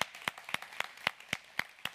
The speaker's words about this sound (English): In fact, we always show our appreciation for first-time guests with a hand clap. So can we bless our first-time guests?